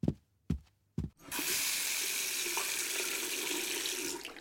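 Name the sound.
tap running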